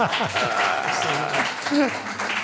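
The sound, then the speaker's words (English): An audience applauds in a steady, dense wash of clapping lasting a couple of seconds, with voices calling out over the clapping. “Yeah, we can applaud.”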